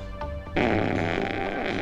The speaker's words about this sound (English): Next time we see her, there's like a slow pan up to her ass on the bed, and she farts.